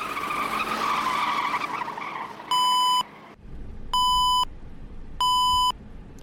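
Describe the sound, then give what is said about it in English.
A minibus's speed warning beeps three times on the highway, each tone about half a second long and roughly a second apart, loud over steady road and engine rumble, with no one talking. “If the driver's nice, they will slow down just enough so that it only beeps every other second.”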